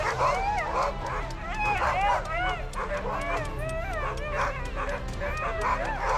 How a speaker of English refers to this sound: Now, it sounds like the Alpha Dog has a few more friends. It's hard to tell if they're actually friends or not. I think they're tearing down our TV discussion. This is what happens when you give dogs 60 seconds to celebrate.